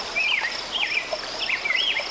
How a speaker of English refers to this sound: Neil Ewers made this recording along the shores of Lake Superior